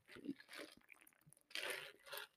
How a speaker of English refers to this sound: Let me take a sip of my oat milk latte.